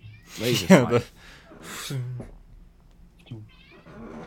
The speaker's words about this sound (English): Anyways, your cat's mad loud. Yeah, you see, your cat is loud. Wow, that was great English. Oh, you can still hear this fucking cat a little bit. Yeah. Why'd you name your cat Loki?